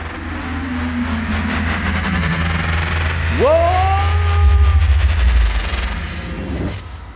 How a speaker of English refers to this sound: The train's leaving, you're coming with me.